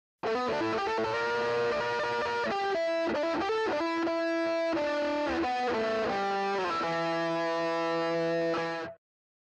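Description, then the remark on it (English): A heavily overdriven electric guitar, an Epiphone SG played through a Vox Copperhead Drive and a Boss SD1 boost pedal, plays a fast solo line with sustained bends and quick note runs, loud, with no talking over it. “let's go ahead and give a listen to our Epiphone SG, our Vox Copperhead Drive, and our Boss SD1 with a … solo tone”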